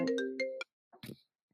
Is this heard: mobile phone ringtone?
yes